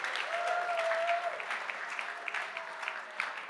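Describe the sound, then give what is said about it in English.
A crowd claps steadily, a dense wash of many hands applauding together, with a faint whistle-like tone rising briefly early on; the applause holds at an even, moderately loud level throughout. “Round of applause. Huge round of applause.”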